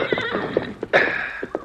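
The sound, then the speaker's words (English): A horse whinnies loudly, a long shrill neigh, while hooves clip-clop in an uneven rhythm underneath. No voices are heard. “Use this horse, Thundercloud.”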